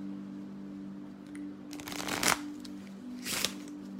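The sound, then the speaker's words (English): Playing cards are riffled and shuffled for a card reading in two crisp, rustling bursts, a longer flutter followed by a shorter one, over a faint steady hum with no talking. “All right, let's get you some cards.”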